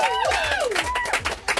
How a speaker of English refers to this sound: This is the first time the staff have ever applauded us.